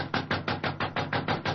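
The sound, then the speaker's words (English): Rapid, steady knocking on a dressing room door at a theater three-quarters of an hour before curtain time, about eight firm raps in an even rhythm, each a dull, fairly loud thud, with no voices. “Oh, he must be in his dressing room. I'll knock again.”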